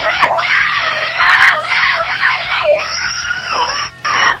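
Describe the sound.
A loud, raspy rock-singer scream held for about four seconds, its pitch wavering and briefly dipping before a final burst, with reverb washing over the voice.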